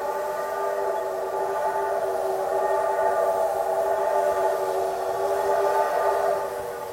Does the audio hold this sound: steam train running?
yes